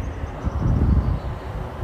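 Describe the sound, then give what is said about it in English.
Wind buffets a microphone in a steady low rumble, swelling into a stronger gust in the middle before easing back, outdoors in the suburbs of Salt Lake City on a warm day. It's fairly loud, with no talking. “It's got a little windy here.”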